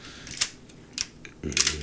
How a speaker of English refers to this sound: Oh, it sounds so good. The shutter release. You know what it sounds beautiful. Like? For all your gun enthusiasts out there, it kind of sounds like that.